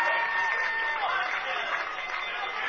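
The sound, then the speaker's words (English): A large crowd at a college football game gives a standing ovation as Mount St. Joseph takes the field in the afternoon, a steady, dense roar that holds at an even level throughout, with a few faint whistles cutting through the noise. “Coming out here and to a standing O from the crowd here this afternoon.”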